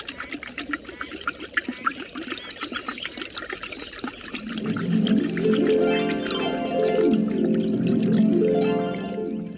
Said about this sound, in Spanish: Pero si miras bien y si escuchas mejor, aquí a mi lado hay un pequeño arroyo.